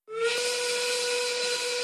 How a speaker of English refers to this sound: Now you've done it. You've made me 1930s work whistle angry.